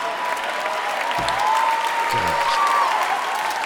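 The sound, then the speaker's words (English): Steady applause from an audience, a dense, even patter of many hands clapping at a constant loudness, with a couple of brief low vocal sounds underneath. “Was I supposed to laugh and clap then?”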